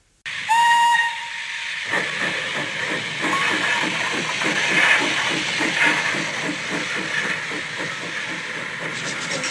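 The steam locomotive Bessie from Chigley gives a short, shrill whistle blast, then shunts out of its shed and starts chuffing in a steady, even rhythm as it gets moving, loud, with a constant hiss of steam.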